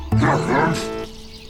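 A dog lets out one loud, drawn-out yelping bark, lasting about a second before fading into a quiet background hum.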